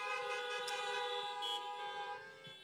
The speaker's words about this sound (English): And if you believe it, all of God's people gave a horn honk of praise.